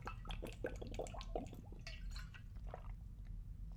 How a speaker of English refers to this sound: And we're going to take a pause for a drink right here because I'm getting thirsty.